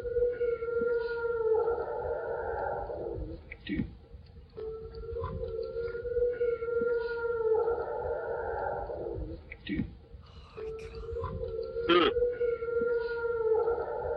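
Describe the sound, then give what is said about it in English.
Long, wavering wolf howls rise and hold, repeating in three similar cycles over a low background rumble, with a few brief knocks between calls. No one speaks. “have wolves running around out there, do you?”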